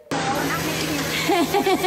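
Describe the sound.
A school bus engine idles steadily as a kindergartner returning from his first day of school gets off the bus, a constant low rumbling drone throughout, with a voice briefly speaking over it near the end.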